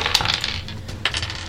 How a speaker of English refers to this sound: You have so many dice in this. Yes. No, I know I've got lots of dice in it. That doesn't mean I'm going to roll well.